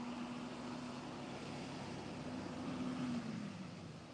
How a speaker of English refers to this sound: Out here in East County, they got these big trucks going out all the time.